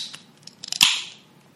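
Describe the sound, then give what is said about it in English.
A Sculpin IPA beer being opened: a few small metallic clicks and crinkles, then one sharp crack followed by a bright fizzing hiss that fades over about half a second. No one speaks. “Well, we're coming back from a little bit of a break, and that sounds like a good time to open my next beer, as I drank last time, which is kind of good to keep the continuity within the same film.”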